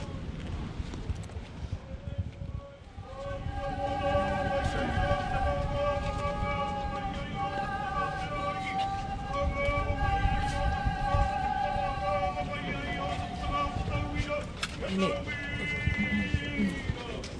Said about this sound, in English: And as you may be hearing right now, the crowd are filing through, the local tangata whenua representatives are filing through the brand new wharewaka, or the house that will have the waka inside.